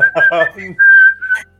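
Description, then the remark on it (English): Someone whistles a brief, simple tune: a couple of steady, clear notes held for a moment, with a short burst of voice just before the whistling starts. “I have a tune. V whips out her, I gotta whistle it.”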